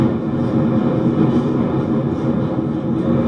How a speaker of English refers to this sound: Then, the train slows down as it passes out of the tunnel towards the platform.